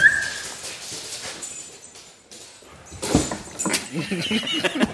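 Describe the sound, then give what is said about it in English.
Dogs romp and scuffle, with soft whimpers and yips breaking through the scrabbling and thumping, growing busier toward the end. “Apologize, my dogs are being too rambunctious.”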